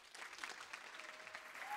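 An audience applauds steadily, a dense wash of many hands clapping at an even level throughout the short stretch, with no voices standing out.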